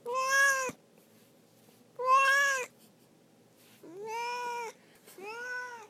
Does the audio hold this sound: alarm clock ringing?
no